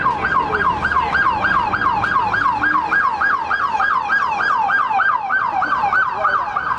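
An emergency vehicle siren passing by yelps loudly and continuously, its pitch sweeping up and down in a fast, steady rhythm several times per second, with faint traffic rumble underneath and no talking.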